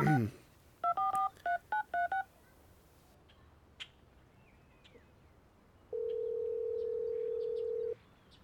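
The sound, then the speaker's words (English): Five quick electronic telephone keypad dialing beeps, each a pair of steady tones, tapped in an uneven rhythm as a call is made, followed after a pause by a longer two-second steady tone, all over a faint low background hiss. “Hey, can I make a quick call on this thing?”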